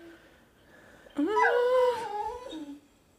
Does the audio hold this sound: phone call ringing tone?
no